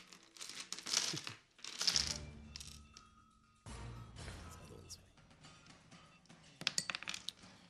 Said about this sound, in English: Oh, yeah. Dice up for this part of the game. Yeah. Yeah. Real dice. Bring that dice. See how bad I roll. Whoa, that was much louder than when I tested it.